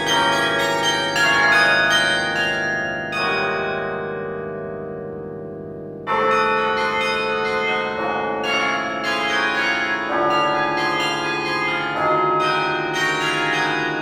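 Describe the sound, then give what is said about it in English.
Automatic carillon bells in Amsterdam, driven by a 17th-century pin drum with hundreds of pins, chime a melody arranged from a guitar piece, each struck note ringing out and overlapping with lingering resonance. The tune moves at a steady, unhurried pace, loud and clear with no voices. “My teacher had taken the time to change the 17th century pin drum with hundreds of pins to put that melody on the automatic bells.”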